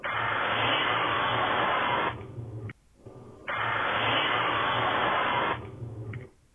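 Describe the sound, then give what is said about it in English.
Bug spray hissing from an aerosol can in two steady bursts of about two seconds each, with a short pause between, loud and breathy with no voices. “That was close, but no, that is bug spray being sprayed.”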